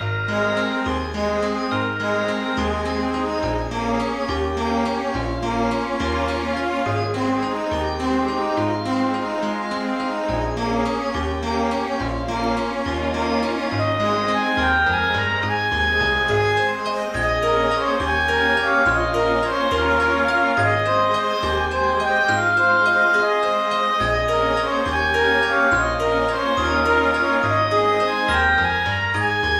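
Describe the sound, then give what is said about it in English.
The instrumental theme tune of the television series Tales of the Unexpected plays throughout, a bright tinkling melody over a steady, repeating bass pattern at an even, fairly loud level, with no voices. “Tales of the Unexpected. I'm too young. Okay. Well, here's the thing. You might recognise it.”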